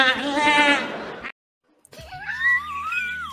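A voice imitates a goat's bleat with two loud, wavering, nasal cries, the second rising and stretched out after a short silence, sounding strained.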